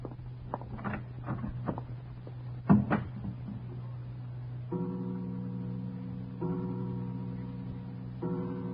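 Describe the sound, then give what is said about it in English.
An unlatched door opens as someone walks in: a few soft latch clicks and rattles, a sharp knock of the door swinging, then a steady low droning tone that continues in stretches. No voices. “Forgive me for just walking in, Herr Leutnant. Good evening, Herr Kommandant. The door was unlatched.”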